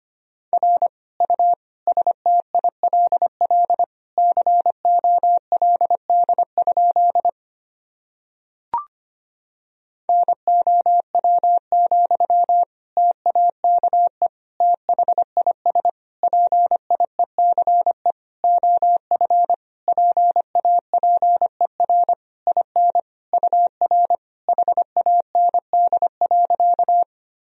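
Rapid Morse code beeps at 25 words per minute in a single steady mid-high tone, keyed in quick dots and dashes, broken by a short pause with a soft click before the sending resumes. No voices.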